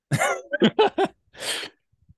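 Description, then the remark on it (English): A series of short snorting bursts followed by one longer, breathy honk as someone blows their nose, with no talking. “Let me know when you're done blowing your nose.”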